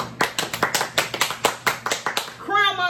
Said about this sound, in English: That's a round of applause for that.